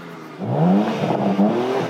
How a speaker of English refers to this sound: he's actually got his back to us because being such a passionate car guru, as well as train spotter, he wants to work out what car it is just from the engine. So that's quite a nice test.